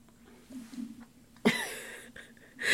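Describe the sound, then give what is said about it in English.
A female cat named Lorenza licks herself, with wet, raspy lapping noises that burst in suddenly partway through and keep going in uneven smacks, swelling again at the end over a faint low hum. “Guys, if you're hearing that, that's Lorenza, my cat. She's licking herself.”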